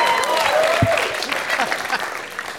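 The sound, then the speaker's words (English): An audience claps steadily in a dense, continuous patter of many hands, fairly loud throughout, with a few faint voices and a brief whistle-like tone mixed in. “Yes, applaud”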